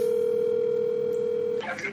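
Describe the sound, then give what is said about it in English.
A steady, unbroken electronic phone tone plays loudly over a speakerphone for about a second and a half, then cuts off abruptly into brief muffled noise and voices. “Put it on speakerphone. I'm doing it.”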